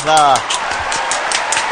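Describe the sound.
A short voiced shout opens, then a light burst of applause follows: a dense patter of overlapping claps at moderate loudness, continuing steadily to the end.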